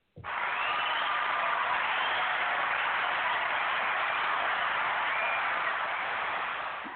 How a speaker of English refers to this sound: The hand clap of praise gets me every time.